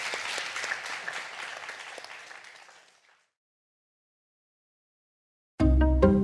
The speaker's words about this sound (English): All right, thank you so much, everyone, for coming. It's much appreciated. Would you give a big round of applause